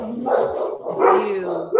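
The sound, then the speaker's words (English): A dog at a window barks at a random yellow truck driving by, a rapid string of loud, tonal, slightly whiny barks, three bursts in under two seconds, with no one talking. “It's just a random yellow truck that happens to be driving by. Get away from the window.”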